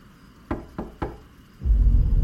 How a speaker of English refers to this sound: His thoughts were interrupted by knocking from below, echoing through the now empty bedroom doorframe.